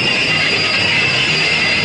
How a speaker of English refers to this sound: Stop the engine! So he stops the engine again.